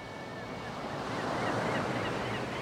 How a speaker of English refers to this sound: The age-old sound of the sea. The same sound folks are hearing right now up around Penobscot Bay and Marblehead, on the Chincoteague Inlet, down in St. Bernard Parish and clean over to the west coast, by Guadeloupe and Carmel